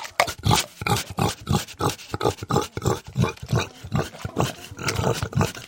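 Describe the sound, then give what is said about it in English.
A pet pig grunts in a steady run of short, rough bursts, roughly two per second, loud and continuous with no talking over it. “I have a picky pig.”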